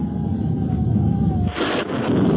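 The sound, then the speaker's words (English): A deep, continuous rumble of thunder rolls throughout, swelling into a louder, crackling burst about halfway before settling back into a heavy low roar. No voices are heard. “Thunder.”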